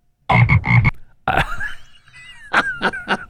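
A toad croaks loudly: two quick throaty croaks, a longer warbling call, then three short croaks in a row, with no talking.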